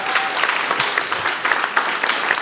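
An audience claps steadily, a dense, sustained patter of many hands at an even loudness with no voices over it.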